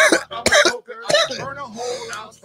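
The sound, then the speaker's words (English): A few harsh coughs in quick succession, loud and raspy, followed by throaty vocal sounds as someone recovers and starts to speak. “It'll take until March to get rid of that cough.”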